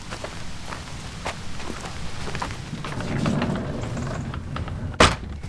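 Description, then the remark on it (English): Footsteps crunch and scuff over a cobbled area in the old part of a mill at a steady walking pace, coming in through a sliding door, with a rumbling background and a sharp louder knock near the end. “We come in through the sliding door. We've gone over a cobbled area, which is the old part of the mill.”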